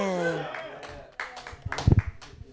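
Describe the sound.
A voice speaks briefly, then an audience breaks into scattered hand clapping and crowd noise, a loose, uneven burst of claps that builds and peaks near the end.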